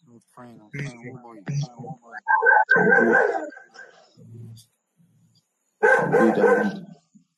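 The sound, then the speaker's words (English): A dog barks loudly in a couple of bursts, separated by a quiet pause, with someone talking briefly beforehand. “I think we are hearing your dog also.”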